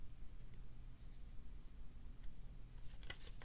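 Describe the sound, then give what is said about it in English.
Superworms, Zophobas morio beetle larvae, chewing through polystyrene in microbiologist Christian Rinke's laboratory: faint, irregular crunchy clicks and crackles over a low rumbling hum, growing busier toward the end, with no voices. “Now, from Scientific American, a microbiologist's laboratory, Christian Rinke, features a startlingly loud crunching noise, worm-like larvae chewing their way through polystyrene.”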